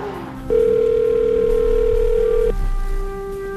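An outgoing phone call rings on the line: one steady, mid-pitched ringback tone holds for about two seconds, then cuts off, leaving a low hum with no talking.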